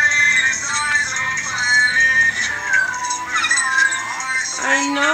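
Dogs crying with high, wavering whines and howls that rise and fall in pitch almost without pause, layered over a dense background of music that stays fairly steady in loudness.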